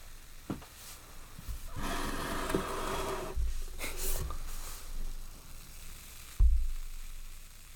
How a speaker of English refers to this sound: It is very fizzy. It is very fizzy. I like that. Are they both fizzy? I thought I might just poured mine wrong. I can hear mine. Yeah. The mic can probably hear mine.